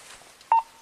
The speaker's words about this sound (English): So the cops are walking up. That beep is them turning on the microphone. The microphone, which is something they often forget to do. But in this case, they did. It should always be on.